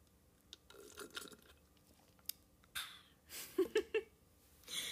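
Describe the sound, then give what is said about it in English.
Someone drinks water: quiet sips and mouth sounds, then three quick, distinct gulping swallows in a row, followed by a soft exhale. No talking. “I don't know why I need you all to hear me drink water, but stay hydrated and just get that back in your system.”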